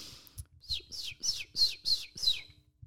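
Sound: person imitating bird chirping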